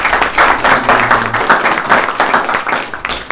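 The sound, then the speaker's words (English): A round of applause from a group at a meeting, given for a visiting captain: dense overlapping claps that keep a steady, moderately loud level throughout, with a faint low hum beneath. “So, can we get a round of applause one for one Captain?”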